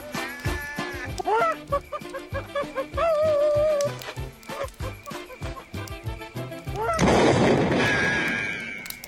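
Rapid, repeated gunshots from a film scene crack in an irregular volley, with voices in the mix, ending in a louder, sustained burst of crackling fire that sounds intense.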